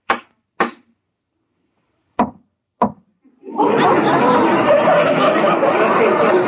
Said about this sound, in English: Well, if you don't mind, I'll smoke my pipe. What's a captain without a pipe? I'll just knock out some of this tobacco.